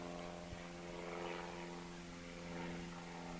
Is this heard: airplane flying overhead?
yes